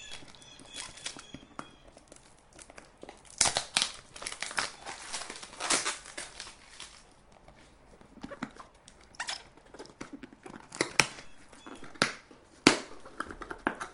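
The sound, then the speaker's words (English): Tape and packaging are crinkled and rustled while a parcel in an HP toner box is unpacked: irregular bursts of crackling and crumpling, some sharp and loud, with quieter rustles between and no talking. “It's in an HP box. It's in a toner box.”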